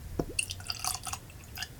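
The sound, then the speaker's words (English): 97-proof bourbon is poured into a glass, with a brief run of quiet gurgling splashes and glassy drips lasting under two seconds, with no one talking. “So let's go and get that poured.”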